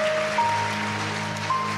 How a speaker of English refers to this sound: Palmas para eles assim que vem. Aleluia. Oh, keep clapping for them. Continua a bater as palmas para eles.